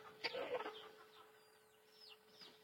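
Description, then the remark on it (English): A baby chicken clucks in a short burst, followed by a few faint, high peeping chirps trailing off over a steady low hum, with no talking. “I thought there was another baby chicken.”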